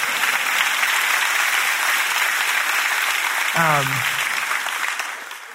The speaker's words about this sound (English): You can clap for my father.